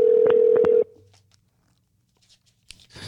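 A loud, steady telephone tone sounds for under a second with a couple of sharp clicks over it, then cuts off into near silence broken by faint clicks and rustling.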